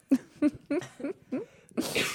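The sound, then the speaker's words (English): A coughing fit: five quick, rough coughs in an even rhythm, ending in a longer, harsher, breathy burst. No talking. “Sorry, I'm having a coughing fit.”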